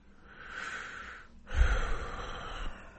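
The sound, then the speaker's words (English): A raspy breath drawn in and then pushed out, each lasting over a second, with a faint whistling wheeze running through the airy noise. No talking. “You're not supposed to wheeze when you're breathing.”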